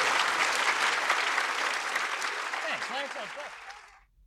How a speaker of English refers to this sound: Thank you so much. Huge round of applause for pleasure, the fabulous guys. Thank you.